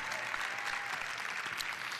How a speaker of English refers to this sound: You don't see them, but right up there behind that screen is our television media department up there. Don't they do it? Give them a big hand clap so they can hear it up there.